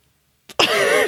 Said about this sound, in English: Classically, I'm going to burp now as well.